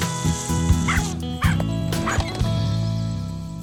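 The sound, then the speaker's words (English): A West Highland Terrier yaps several times in quick, uneven bursts, mixed with whiny whimpers, fairly loud over a steady tonal background hum. “It's a fucking West Highland Terrier.”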